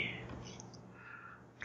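A few soft computer mouse left-clicks: two light ticks near the middle and a sharper click at the end, over a hushed, breathy background like whispering.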